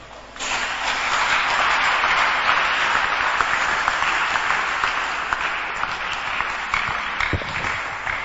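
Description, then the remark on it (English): A crowd breaks into sustained applause for Jesus during a sermon, many hands clapping in a dense, steady wash of sound that holds for several seconds without voices standing out. “Clap for Jesus.”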